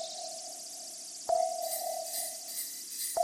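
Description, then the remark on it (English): Bright, continuous jingling of sleigh bells on a Martian spaceship shimmers over a steady mid-pitched electronic hum, with a sharp metallic clink partway through and another at the very end. No one speaks. “Sleigh bells? On a Martian spaceship?”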